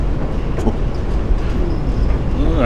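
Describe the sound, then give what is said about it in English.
A subway train rumbles steadily along the tracks, a loud, continuous low roar with faint rattling and a brief rising metallic whine near the end. “Wait, what did you mean first time? On the subway?”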